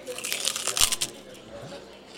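Loud crunching of extra crunchy chicharrones (pork rinds) being bitten and chewed, a quick cluster of crackly bursts in the first second that fades into quieter chewing.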